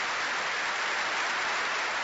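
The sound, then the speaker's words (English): Dense, continuous applause and cheering from members of Congress in the Congress chamber, a steady wash of many hands clapping at once with no break or individual claps standing out, and no speech over it. “Trying to find who's not clapping.”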